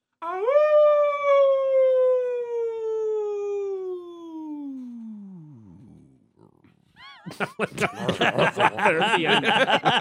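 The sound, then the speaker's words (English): A person imitates a wolf howl, recorded to be clipped and used as a wolf sound: one long, steady wail that slowly slides down in pitch and fades out, followed by a burst of loud, choppy laughter. “All right, so we're going to clip that, and we're going to use that as our wolf.”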